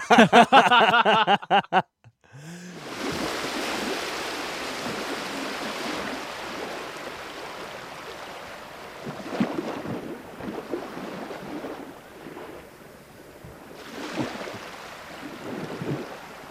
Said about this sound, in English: give you a few moments while you listen to a gorgeous ocean breeze with waves lapping up